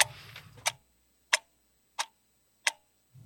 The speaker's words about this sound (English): Little clock.